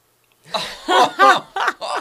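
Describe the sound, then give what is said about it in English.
Five harsh, throaty coughs in quick succession, fairly loud, each a short rasping burst with a voiced edge, forced and deliberate-sounding, with no talking around them. “And all right, you cough.”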